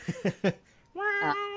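A domestic cat named Zora gives a few quick chirping mews, then a long, drawn-out meow, fairly loud, with no one talking over it.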